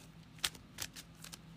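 Playing cards being shuffled, with the cards Harvest, Giant Edison Robot and Harvest shuffled into the deck: a quiet run of crisp, papery flicks and snaps arriving in uneven bursts, with no voices.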